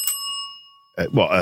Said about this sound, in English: Slightly overpriced reception bell. Sound effects straight from Are You Being Served? Yeah, that's exactly. I do like the bell. It was a nice addition.